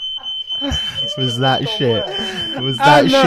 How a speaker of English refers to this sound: Oh, and the fire alarm goes off.